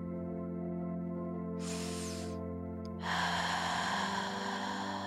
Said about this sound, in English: Grab control of your breath again. Inhale and exhale. Whatever comes out, you can make crazy sounds if you want to. You can scream if you want to.